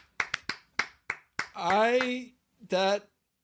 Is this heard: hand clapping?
yes